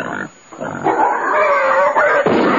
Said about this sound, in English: I took the gun and went up a piece into the woods. when I see a wild pig.